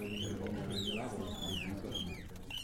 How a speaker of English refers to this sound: flew around my head, tweeting up a storm. At least I have one friend during all of this bullshit. My powder blue mockingbird has been by my side all these years